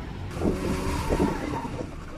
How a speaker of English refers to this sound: Then one of the drivers purposely rammed his truck into the other car before speeding off.